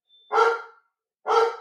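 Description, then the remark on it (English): Two loud, sharp dog barks separated by a short pause, with silence around them and no talking. “Now, you may have just heard my dog barking.”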